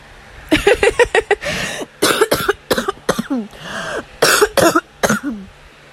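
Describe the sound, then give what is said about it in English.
A fit of harsh coughing, caused by allergies acting up and an air bubble in the throat: a quick run of sharp, loud coughs, then several more uneven clusters of hacks mixed with throat clearing, with no talking in between. “Apologies, my allergies are acting up and I had an air bubble in my throat.”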